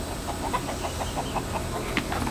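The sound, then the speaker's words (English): Chickens cluck in a steady stream of short, repeated calls at moderate volume over a constant low background hum, with no one talking. “See, these chickens just don't understand my filming schedule.”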